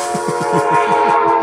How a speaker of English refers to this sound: stupid train.